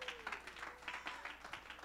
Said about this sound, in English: Somebody ought to clap your hands and give God some praise.